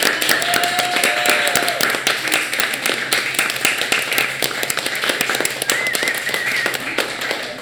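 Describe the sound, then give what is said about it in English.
A room full of people applauding an artist, steady dense clapping that keeps going at an even, fairly loud level throughout, with a few faint whoops or whistles mixed in and no speech. “and so I think she, like, this is amazing, and I would like the room to applaud this amazing artist.”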